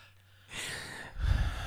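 Someone takes a drawn-out, breathy sniff of a drink, followed by a second heavier snort-like breath with a low rumble. No one speaks.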